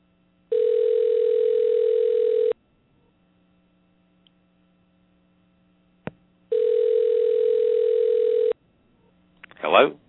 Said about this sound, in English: And I'm going to call him right now. And y'all just stand by and you'll hear it ringing. We're going to try it live.